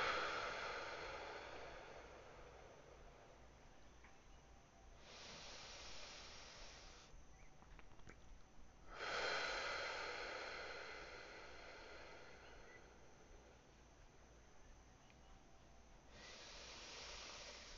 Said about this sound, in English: Yeah, breathing's great, you guys. I highly recommend it.